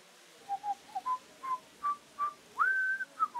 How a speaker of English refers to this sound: Dupin, are you whistling?